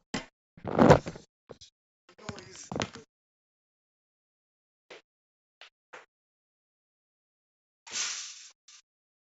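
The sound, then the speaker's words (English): A door being closed: a burst of scuffing and creaking, a few sharp knocks, then a short hissing sweep near the end, with faint talk in the background. “sorry, I'm just distracted with the with the door. I'm just gonna close it”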